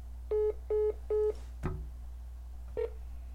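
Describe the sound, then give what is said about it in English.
A phone chimes as a call is accidentally accepted instead of hung up: three short, evenly spaced electronic beeps, a soft thump, then one more brief tone. It is fairly clear, with no one talking. “Sorry, I was trying to hang up with my girlfriend, but instead I ended it accepted.”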